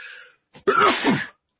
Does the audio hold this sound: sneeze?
yes